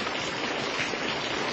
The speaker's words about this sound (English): Water. Flood water. It's flood water and it's washing the whole site away.